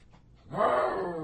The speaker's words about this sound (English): sorry about the puppy, he sums it up. He's got a good bark, though, doesn't he? He just has a good bark. That dude is 2.5 months old. He's taking on a tomcat that's about to stomp his ass during the podcast.